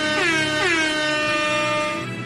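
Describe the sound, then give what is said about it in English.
A loud, brassy air horn blares in a sustained burst with quick stuttering blasts at the start, dense harmonic tone filling the whole clip with no voices. “Drop the air horns!”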